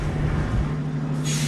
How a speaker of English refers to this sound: The next two buses arrive, and this time it's a few dozen men clutching folders and smiling nervously at the clapping volunteers.